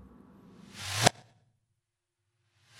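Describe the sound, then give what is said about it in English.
A reversed reverb whoosh, made by flipping a sound backwards digitally with its lower end EQ'd out, swells up in about a second to a sharp, sudden cutoff, followed by silence before another swell begins rising at the end. “EQ out the lower end of the sound if you're looking for a whooshing backverb.”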